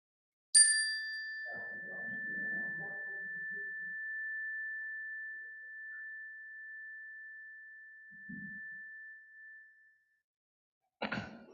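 A single chime is struck clearly during a prayer service in a sanctuary and rings out with a long, pure sustained tone that slowly fades over about ten seconds, while faint murmuring voices rise softly beneath it.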